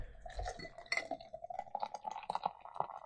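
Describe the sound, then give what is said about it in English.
Beer is poured hard from a can into a glass, a continuous glugging pour with a few glassy clinks near the start and a fizzy, bubbling rush throughout as a large foamy head builds. “But I am going to pour hard. Now, will this glass hold the whole can?”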